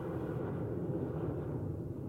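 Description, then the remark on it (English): A steady, low rumbling drone of an unseen airplane passing overhead, continuous, with a deep roar holding evenly throughout and no voices. “What's that sound? The sound of an airplane. I can hear it, but I can't see it.”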